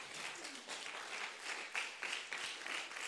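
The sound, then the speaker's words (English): An audience claps steadily for about three seconds, a dense, even wash of many hands with no one speaking over it. “The miracle is always in between the floor and the stand, give him a clap up.”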